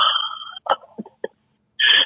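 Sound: sneezing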